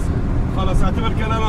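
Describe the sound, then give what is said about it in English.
A steady low engine rumble and road drone fill the cabin of a moving car carrying a young married couple, on the road between Konya and Izmir in Turkey, constant throughout, with a voice speaking faintly over the noise partway through. “I'm in a car with a young married couple from around Damascus.”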